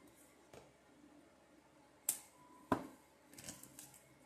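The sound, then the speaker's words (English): Cards being shuffled, heard as a few sharp, papery snaps spaced apart and then a quick flurry of crisp flicks near the end, fairly quiet with no one talking. “It's the shuffle for me.”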